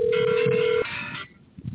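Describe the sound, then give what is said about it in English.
A phone rings with an incoming call from an unknown caller: a steady electronic tone that cuts off after under a second, followed by a brief buzzing warble and quiet line noise. No one speaks. “Unknown caller.”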